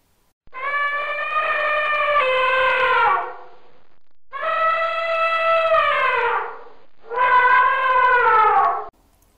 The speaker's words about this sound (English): And it's an elephant. Did you guess elephant? Excellent.